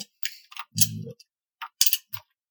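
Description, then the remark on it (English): Small metal printing type letters being picked by hand from a type case, with capital letters kept in the upper case and small letters in the lower case: a handful of light clicks and tinny clinks in an irregular rhythm, with brief silences between them and no talking. “So uppercase, I keep capital letters. Lowercase, I keep small letters.”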